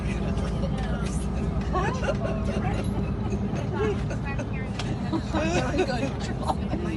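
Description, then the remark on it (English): Steady low engine rumble and road noise fill the space inside a moving bus, with a murmur of indistinct voices chattering throughout. “I don't have enough hands on a bus.”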